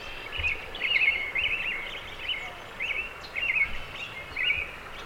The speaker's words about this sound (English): Alongside the river, bright, lush clusters of trees and bushes are home to a noisy chorus of birds.